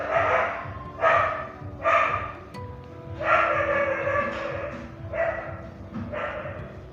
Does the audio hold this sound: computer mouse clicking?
no